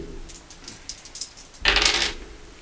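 Two dice rattle with a quick run of light clicks, then clatter onto a hard surface in one louder, brief burst before settling, rolled to fight a zombie in a card game. Clear, with no voices.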